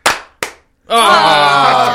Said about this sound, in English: Yes, I did not fuck up. That we were doing 3 claps.